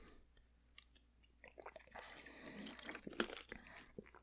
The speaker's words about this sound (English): Let me drink some water real quick.